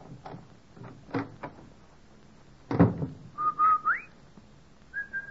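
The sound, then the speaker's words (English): A few knocks and a door-like thud, then a mother home from work whistles a short signal call to the children in a Kansas City, Missouri household: two quick notes ending in an upward slide, followed by one brief held note. No one speaks. “The Rinso whistle is our way of telling the children we're home from work.”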